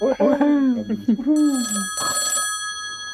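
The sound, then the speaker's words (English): A brief burst of voice is followed by a telephone bell ringing, a bright, sustained metallic trill with a louder rattling pulse before it fades. “Oh, just a minute, my phone's going.”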